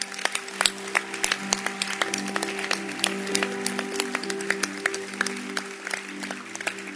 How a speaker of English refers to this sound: Before I sit down, can you clap your hands?